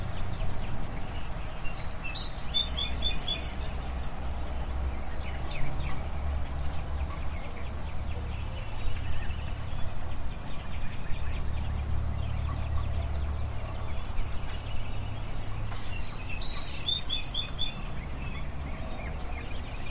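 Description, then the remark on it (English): Birds call in two brief bursts of quick, high chirping, one near the start and one near the end, over a steady low outdoor rumble with no voices. “How about if we take a little break here in the middle of the show for just a few deep breaths and the sound of birds?”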